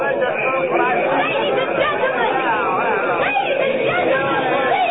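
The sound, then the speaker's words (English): A large crowd yells and boos at the Sky Chaser's first trip, refusing to buy tickets, in a steady, dense roar of overlapping voices, loud and unbroken for the whole stretch, with occasional sharper shouts rising above the din. “Look at that crowd. The sky chaser is supposed to make its first trip now. Nobody's buying a ticket. They're yelling and booing.”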